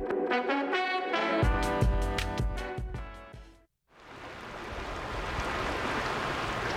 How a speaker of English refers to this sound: Do you hear that? The soothing sounds of a gently flowing creek. Talk about ASMR.